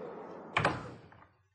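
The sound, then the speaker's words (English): A single solid garden door thunk lands, a short, dull knock of wood with a few faint rattles trailing off as it settles into quiet. “This garden door is usually kept unlocked, I suppose.”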